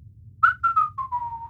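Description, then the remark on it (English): A man whistles a short, clear tune of about five notes that slide gently downward in pitch, over a low, steady background hum. “Goro turned off the video feed and whistled.”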